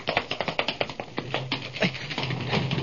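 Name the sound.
tapping on a door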